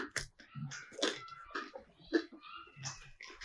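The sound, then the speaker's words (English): Chewing on crusty homemade sourdough bread with herbes de Provence, with moist, crunchy bites and smacking mouth sounds coming in an irregular rhythm for several seconds, moderately loud, with no talking. “Everyone, this is us eating homemade sourdough bread with herbs de Provence.”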